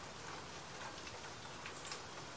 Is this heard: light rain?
yes